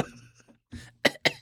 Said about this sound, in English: Cough, cough.